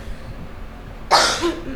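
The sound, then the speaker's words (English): A single sharp cough bursts out after a second of quiet room noise, followed by a brief raspy tail as it fades. “It's going to be coughing and sexy voices the entire time.”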